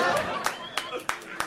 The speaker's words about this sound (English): I bought a car off of a car lot recently, a couple of days ago. I'm excited about it. Thank you. I felt like it deserved way more applause.